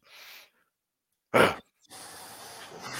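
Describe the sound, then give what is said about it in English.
Heavy breathing into a microphone: a soft exhale, a sharp loud breath after a pause, then a longer noisy drawn-out breath, with silence between them and no speech. “All right, I had to stop this because there was a lot of silence and heavy breathing.”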